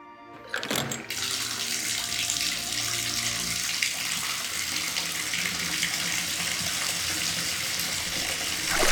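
household object, bathtub filling with water

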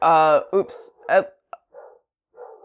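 animal, dogs barking

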